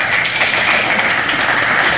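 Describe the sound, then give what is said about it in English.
An audience at Trinity Church applauds steadily, many hands clapping in a dense, continuous crackle that stays loud and even for two seconds with no voices over it. “All of the praise and applause and credit goes to the Lord, doesn't it?”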